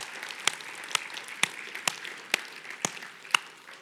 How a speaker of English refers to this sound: Yeah, we can clap for that.